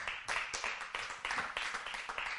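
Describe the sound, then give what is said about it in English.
A church audience gives the Lord a hand clap, a dense, steady patter of many overlapping claps with a fast, uneven rhythm, moderately loud, with no speech over it. “Go ahead and give the Lord a hand clap.”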